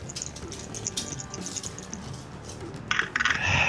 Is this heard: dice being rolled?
yes